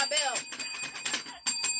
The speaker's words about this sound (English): I had to find my bell.